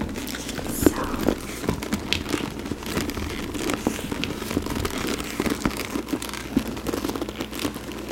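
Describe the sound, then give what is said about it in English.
Steady crinkling and rustling as a large bag with a red interior, a side pocket and an adjustable long strap is handled, with irregular small crackles and taps throughout, over a faint low background hum. “Soft Spoken, Leather Sounds, Crinkle Sounds”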